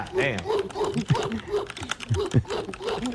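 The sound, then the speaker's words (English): Rapid keyboard typing, a steady patter of sharp clicks, runs beneath a voice speaking throughout, the keystrokes moderately loud. “Jeez, what is typing out?”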